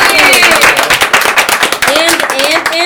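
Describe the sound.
An audience claps steadily, a dense wash of many hands applauding at a loud, even level, with a few cheering voices rising over it toward the end.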